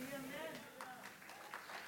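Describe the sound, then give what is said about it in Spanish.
Scattered, faint applause from people at a religious service, also streamed on Zoom, a handful of distinct claps spaced irregularly, with a voice murmuring in the background. “Si van a aplaudir o, como decían, tortear, tortillen bien, aplaudan bien para que se oiga bien bonito allá en los que están en Zoom en este momento.”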